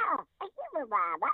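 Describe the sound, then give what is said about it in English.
A cartoon voice actor imitates a cartoon duck's quacking: several raspy, squawking bursts in quick succession with short gaps between them. The voice is fairly loud. “Yeah, I'm not in the greatest duck today, but I'm doing okay.”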